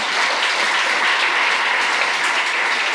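A steady burst of applause from an audience, many hands clapping at once in a dense, even wash of sound that holds loud and constant throughout, with no voices heard.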